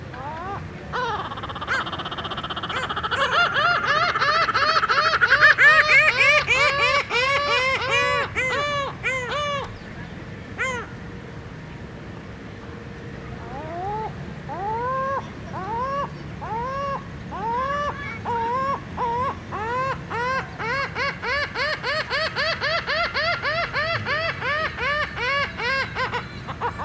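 Lava gull calls ring out in rapid, harsh laughing series, loud, with a brief pause midway before another long run of repeated yelping notes.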